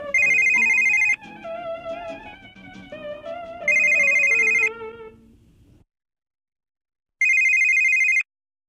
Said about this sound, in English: If you didn't know, I record this podcast on my phone. That's how high-tech it is. And the phone is ringing. It's Mom. I have to take the call.